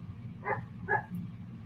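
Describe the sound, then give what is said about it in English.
A dog gives two short, sharp barks about half a second apart over a steady low background rumble, with no one talking. “This is very raw, so you're gonna hear dogs and cats and kids.”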